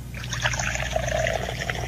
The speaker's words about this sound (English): Oh, yeah, the coffee pour. That's nice. We like that.